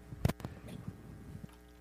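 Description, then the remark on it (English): Someone takes a few quiet sips of water, with soft wet mouth clicks and a faint swallow spread over a couple of seconds, and no talking. “And as you're writing that down, I'm going to get a little bit of water right here.”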